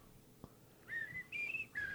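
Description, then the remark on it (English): A person whistles a short, clear tune: three sustained melodic phrases with brief pauses between them, steady and fairly loud, with no talking. “I can't whistle anymore, or they'll sue us for copyright stuff.”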